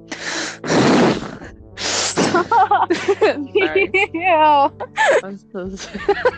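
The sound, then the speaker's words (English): Loud breaths rush into a microphone in two heavy bursts, followed by a run of breathy, voiced gasps and murmurs that rise and fall unevenly. “Who's breathing into a mic?”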